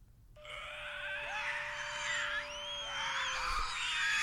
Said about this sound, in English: What did that sound like, this spiritual entity? What did that sound like? So I actually, you know, for this podcast, I screen recorded a clip of the screams, if you are ready.